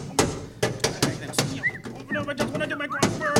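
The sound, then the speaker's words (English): A hammer bangs repeatedly on a storm-damaged mailbox that refuses to open, used to retrieve the morning paper: about eight sharp, loud blows at an uneven pace, with faint chirping tones in the background midway through. “So my client decided to use a hammer to retrieve his morning paper.”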